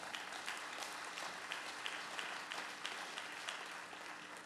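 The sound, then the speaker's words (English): An audience clapping steadily together, a dense wash of many hands with some sharper claps poking through at a fairly regular rhythm, sustained throughout with no talking. “Come on, y'all, we can clap for that right there.”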